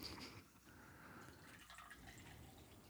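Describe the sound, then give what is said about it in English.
Green tea pours or slurps in a steady, watery hiss with faint drips, running unbroken for about three seconds at low volume with no voices. “Is that your electrolyte water? No. Just some green tea.”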